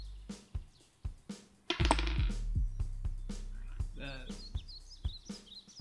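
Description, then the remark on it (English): Dice rolled for a crossbow attack in a tabletop game clatter and tumble across a hard surface, making a quick series of sharp clicks and rattles, with brief bits of voice mixed in. “So range plus level plus that dice roll.”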